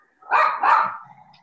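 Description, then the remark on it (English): Puppies barking, two loud, drawn-out barks in quick succession followed by a brief quieter trailing sound, with no voices present. “Puppies. Oh my gosh.”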